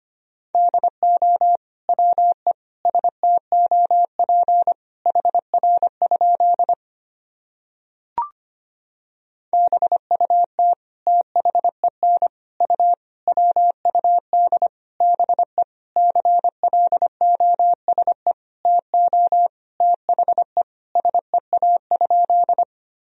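A steady single-pitch tone keyed on and off in rapid dots and dashes, Morse code at a brisk 25 words per minute sending practice sentences made of common words and abbreviations, with a short silent gap partway through and no voices.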